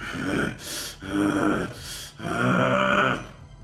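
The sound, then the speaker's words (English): A voice imitates heavy breathing that comes out as a growl: three rough, throaty exhales broken up by sharp hissing inhales, fairly loud, with no words spoken. “And after he punches, he's gonna look up and he's like breathing like heavily, but it's coming out almost like a growl, like.”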